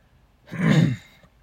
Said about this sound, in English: And if I cough so many times, I apologize. I don't know why all of a sudden I have the coughs, and I don't really know why. It seems like every freaking time I start recording, I get that. Clear my throat again.